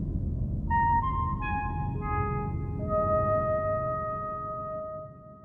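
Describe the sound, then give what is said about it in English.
A five-note tone sequence plays, each pure, sustained note entering about every half second and ringing on so they overlap, over a steady low rumble that fades slightly at the end. “If everything's ready here on the dark side of the moon, play the 5 tones.”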